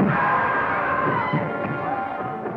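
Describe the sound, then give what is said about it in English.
A loud, sustained scream from a film scene, held for a couple of seconds at a steady high pitch with a raw, strained edge and muffled clatter underneath. “I mean, that's the kind of scream that emanates not from the funny bone, but from the depths of one's soul.”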